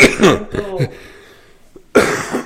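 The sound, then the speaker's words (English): A harsh cough from someone getting over pneumonia bursts out in a quick cluster, then after a short pause a second rough cough or throat-clearing follows, loud and raspy. “Sorry, you're going to have to excuse my cough.”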